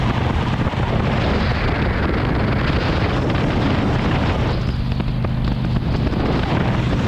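A steady, loud roar of a car driving over the world's longest bridge in Norway: deep engine and road rumble with a low droning hum and rushing wind noise, continuing unbroken for the whole stretch without any talking.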